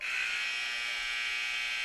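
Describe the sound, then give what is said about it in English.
A loud, sustained electronic buzzer drones steadily for about two seconds, a harsh continuous tone like a gym scoreboard horn, ending the second set of a match in which the Lakers beat Thief River Falls 25-17. No talking over it. “There's the buzzer.”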